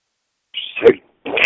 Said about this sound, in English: You forgot to say Gesundheit. Say Gesundheit. Say Gesundheit.